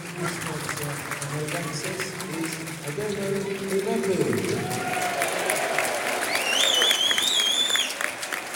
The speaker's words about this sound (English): DeMarco's come out. That was who Essay came in for, listeners. Good applause.